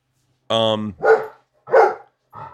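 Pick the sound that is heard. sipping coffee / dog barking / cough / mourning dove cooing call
dog barking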